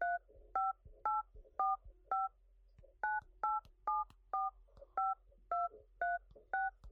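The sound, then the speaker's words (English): A long run of telephone keypad tones, about fourteen short dual-pitched beeps pressed in quick, slightly uneven succession while dialing a long number to reach a phone on a foreign provider, clear with brief gaps between each press and no talking. “Jake has a phone through a foreign provider, so I have to dial an ungodly number of numbers to get into him.”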